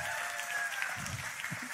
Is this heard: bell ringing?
no